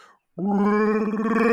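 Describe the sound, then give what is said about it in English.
A person voices a brown bear growl: after a brief pause, one loud, sustained, throaty rumble swells and holds until the end. “A brown bear.”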